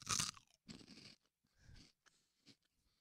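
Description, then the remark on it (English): Wet, crunchy chewing comes in several irregular bursts, starting with a loud crackling crunch followed by softer munching sounds with brief pauses between them. No one speaks. “Chew it and swallow it.”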